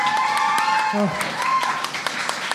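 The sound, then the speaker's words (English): An audience applauds with dense, steady clapping across the whole clip, mixed with voices calling out and cheering over it, applauding the poets of the second round of a scored poetry competition. “And one more round of applause for everyone in the second round.”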